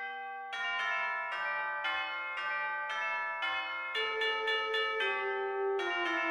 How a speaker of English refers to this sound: And change the ring on that doorbell. Yes, dear, I know. Something simple. Ding dong. I know. I remember. Ding dong.